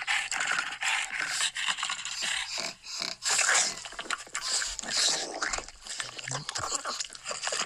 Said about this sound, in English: That's this is audio from the cat. So, that perhaps is somewhat similar to the sounds of some of the aliens in Halo. I think it sounds a lot like the grunts from the Covenant.